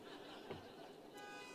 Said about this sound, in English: A lady, I hope those were men honking.